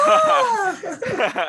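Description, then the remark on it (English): A voice imitates a screech made as a basketball player dunks the ball: a sustained, high-pitched vocal squeal that slides steadily downward for under a second, followed by brief, excited vocal sounds. “Like when Terry had the ball, he was like, "He's got Miles," and then he like screeched.”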